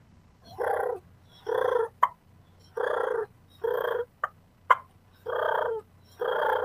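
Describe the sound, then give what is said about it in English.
A diaphragm turkey call sounds a steady series of raspy yelps, about eight of them, broken by a few sharp, abrupt clucks, with no talking. “And, you know, and the cool thing about diaphragm is I can do a real soft purr. I can add clucks in there if I want to do some soft yelps.”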